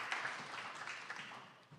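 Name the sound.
faint applause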